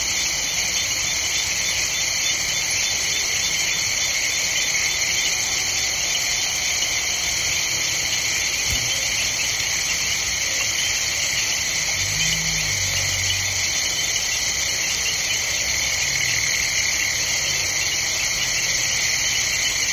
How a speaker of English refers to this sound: We leave you this week along the banks of Kenya's River Mara. … recorded this chorus of frogs, insects, hippos, bats, and other creatures of the night for his CD….